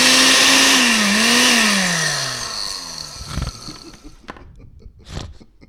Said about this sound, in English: That was the blender.